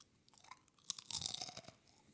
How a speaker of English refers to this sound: Compare the crunch. You go first. This is a butter snap. This is a kettle chip.